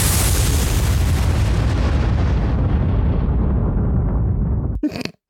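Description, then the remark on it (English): A loud crack of thunder breaks into a deep, sustained rumble that rolls on for about five seconds before a short crackling burst and an abrupt cutoff. No one speaks. “Major and thunder and lightning strike.”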